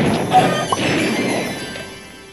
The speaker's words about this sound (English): Did you add an explosion in there?